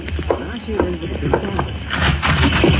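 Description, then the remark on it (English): Horses galloping in the rain at a house near the border of the United States and Mexico, the Cisco Kid and his partner arriving, a quick rhythmic drumming of hooves that grows louder near the end. “Yes, I hear them. Horses galloping.”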